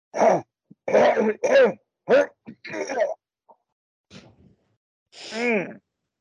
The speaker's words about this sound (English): So the more of the water that we can exhale from the lungs, like just starting to cough it up, but I mean specifically to take the action, the intentional action of coughing so that you can find that stuff and then exhale it.